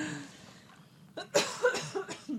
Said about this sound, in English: So you'll have to excuse …. She has a slight cough still.